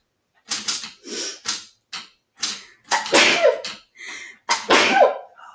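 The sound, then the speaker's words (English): A mechanical typewriter clacks in irregular, loud bursts of keystrokes, with short pauses between runs of typing and no voices. “I'm playing with the typewriter.”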